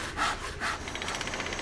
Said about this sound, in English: My next-door neighbors are building a new house, and this has been the soundtrack of my life for the last few months. Sawing.